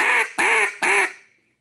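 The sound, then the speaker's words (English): Three loud, raspy quacks from a duck call, evenly spaced in a steady three-note cadence, clear with no talking, the last note trailing off. “Cadence in a duck call, a good one that I was taught from a young age is the song Three Blind Mice.”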